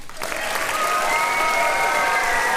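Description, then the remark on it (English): A burst of audience applause for students being called up one by one swells within a fraction of a second and holds steady and loud, dense clapping with a few brighter tonal cheers or whistles layered over it, no speech. “We all need applause, so we're gonna give our applause to each and every one of them.”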